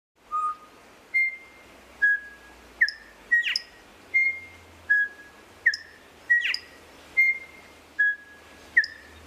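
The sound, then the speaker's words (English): A male bird sings a series of clear, whistled notes at varying pitches in melodic intervals, about a dozen in steady rhythm, with occasional sharper upward chirps. Fairly loud, with no voices. “Here's an example of just musicality of a male song.”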